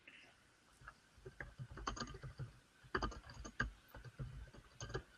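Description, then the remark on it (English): Rapid, irregular typing on a computer keyboard while searching on Google, a flurry of clicky keystrokes in short bursts with brief pauses between them, fairly loud and continuous throughout. “No, look at that typing. It's Google.”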